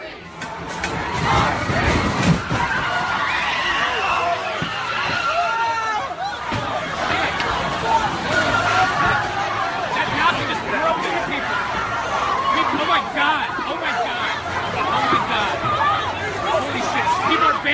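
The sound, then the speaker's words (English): A panicked crowd shouts and screams continuously after a car drives into people, causing a multi-chain accident, many voices overlapping in chaos, with a heavy thud early on as the commotion keeps going. “Holy shit, a car just drove into people, causing a multi-chain accident.”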